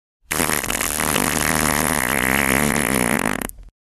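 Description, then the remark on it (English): A long, loud fart runs for over three seconds with a steady, buzzy, slightly wavering pitch, sounding isolated before cutting off abruptly. “Okay, so this is the world's funniest fart according to science.”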